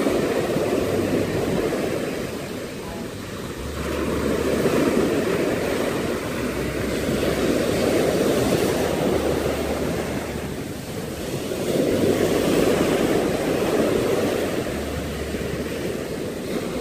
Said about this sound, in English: Let's count the next waves that come in. One, this one here. Okay? The next one. Two. You keep going. Three. Hmm?